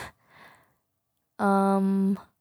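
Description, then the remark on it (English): An audible yawn: a soft breathy intake followed by a loud, drawn-out voiced exhale lasting nearly a second before trailing off. “I'm yawning.”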